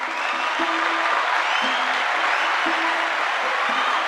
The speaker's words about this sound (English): a round of applause.